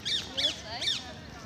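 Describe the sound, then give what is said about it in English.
Birds squawking: three harsh, high-pitched calls in quick succession, each a short raspy burst with a slight rise and fall, followed by quieter background noise. “Squawking, rustling, hedgehogs rustling, birds squawking.”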